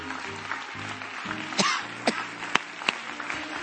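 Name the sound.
audience clapping hands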